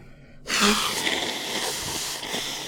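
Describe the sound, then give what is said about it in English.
A sudden, loud burst of breathy noise erupts after a brief quiet moment, like a sneeze, then trails off into a long, hissing exhale that fades slightly over the next two seconds. “Excuse me, I'm going to sneeze again.”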